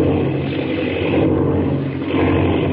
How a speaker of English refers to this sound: Jiminy, the plane. Spinning, it's out of control.